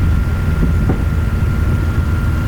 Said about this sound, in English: Gaza Strip now in the Shujaya neighborhood. I can hear the Apache